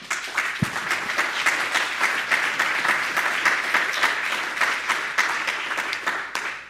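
A crowd applauds a presenter, many hands clapping in a dense, continuous patter at an even, fairly loud level for several seconds, with no one speaking.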